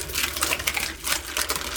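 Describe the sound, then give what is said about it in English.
Crisp crunching of someone chewing fried puffed corn snacks, a rapid series of dry, brittle crackles repeating steadily with no talking. “I'm pretty sure we're just eating, like, deep fried cheese doodle things without cheese.”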